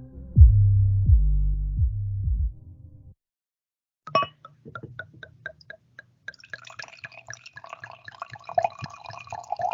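A drink glugs out of a bottle in heavy, rhythmic pulses, pauses, then continues as a lighter, splashing trickle into a glass, pouring nearly half the bottle, with no talking.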